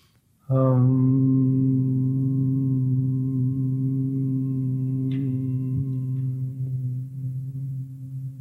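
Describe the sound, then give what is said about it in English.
A sustained, steady low hum from a single voice, made while breathing in during a guided breathing exercise, begins after a brief pause and holds one pitch for about eight seconds, fairly loud, with no talking. “And then breathing in and just humming a little bit to feel your body as energy.”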